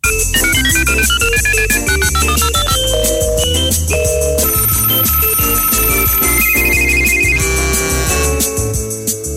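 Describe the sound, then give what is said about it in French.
A bright, melodic ringtone-style phone ring, as a radio show places a phone call to a member, plays loudly and continuously over a busy beat with bass and percussion, with no one talking. “Moment où on téléphone à un membre.”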